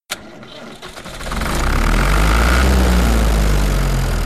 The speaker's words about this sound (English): So they brought some tractors.